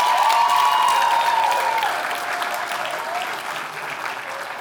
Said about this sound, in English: Give them a round of applause one more time.